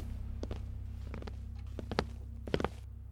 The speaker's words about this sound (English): Locked. Doesn't matter. What's that? It's something I had in my pocket. One more thing you can't remember? I wanted to open the door, so I just reached for it, like it was an instinct. Whatever it is, it seems to have done the trick.